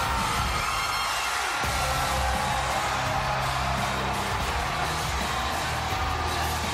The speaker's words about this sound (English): This capacity crowd is screaming.